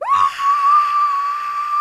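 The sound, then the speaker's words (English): A person sitting in a car with the door shut lets out a loud, sustained scream that rises sharply at the start and holds at a high, piercing pitch for nearly two seconds, raw, with no talking. “It's like slipping out, and I get in the car and I shut the door and I just scream from the top of my lungs.”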